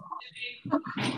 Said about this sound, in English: My dog is in the room as well, don't worry.